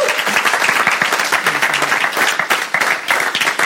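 Steady audience applause, a dense rush of many hands clapping at once, loud and sustained throughout with no pauses or voices standing out.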